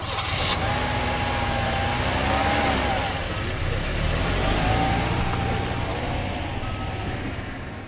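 A car engine splutters and strains without starting, a loud rumble with wavering pitch that continues steadily for several seconds, with no one speaking.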